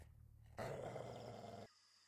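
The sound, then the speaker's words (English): A single loud dog bark, rough and drawn out for about a second, rises suddenly from a quiet, low background hum and then cuts off abruptly. No voices. “A bark.”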